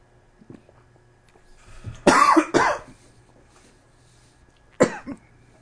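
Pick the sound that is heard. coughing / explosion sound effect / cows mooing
coughing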